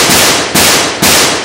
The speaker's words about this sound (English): Four rapid shots with the combat shotgun, and the three slaver guards inside, who had been gambling at a table covered in bottle caps and cigarette butts, they all went down before they had time to react to my presence.